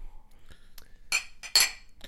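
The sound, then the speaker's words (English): Glasses clink together in a toast, a few bright, ringing taps, with two louder clinks near the end and no voices over them. “Cheers. Yay. Cheers.”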